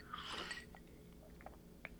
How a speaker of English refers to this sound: So it's a different approach, and I'll give it my first sip.